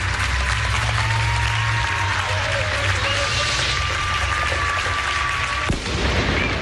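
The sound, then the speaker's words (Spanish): Steady, dense applause from many people across Spain clapping at once around 10 at night, with faint whistle-like tones drifting through and a single dull thump near the end, all continuing without any voices. “El aplauso de España.”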